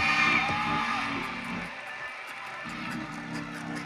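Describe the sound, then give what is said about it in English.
A church audience of many voices shouts and whoops together during a sermon, loud at first, then briefly easing before the yelling swells again, with no clear words standing out. “And y'all just act like y'all my old school church. Just keep screaming.”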